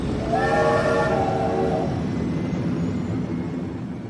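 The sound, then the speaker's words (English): A train horn sounds one sustained, bright blast over a heavy rumble of rolling wheels, then fades while the deep mechanical noise of the moving train carries on. No one speaks. “Once the door was closed, the space train blew its horn and blasted off the disco planet towards space.”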